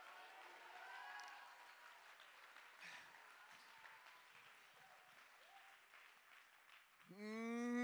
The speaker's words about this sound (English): Somebody clap your hands and shout hallelujah.